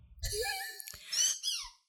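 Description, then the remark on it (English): Two long, shrill squeaks from a dog's squeaky toy, fairly loud, the second sliding down in pitch at the end. No one speaks. “Every time I open my mouth, a squeak comes out.”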